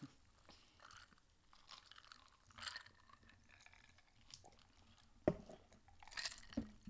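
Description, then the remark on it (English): Quiet mouth sounds of someone taking a first sip of a fizzy margarita-flavored soda: soft slurps and swallows with a few sharp wet clicks near the end, and no talking. “Just first sip.”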